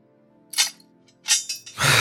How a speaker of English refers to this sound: What I will do is manacle him.